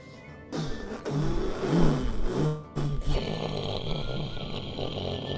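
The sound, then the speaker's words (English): A rumbling roar from a shuttle's engines and the blast furnaces driving the jets on its back, a low, wavering hum that rises and falls, briefly cutting out, then settling into a steady, loud, hissing jet-like rush. “The sound of the engines and the blast furnaces which are driving the jets on the back of this shuttle.”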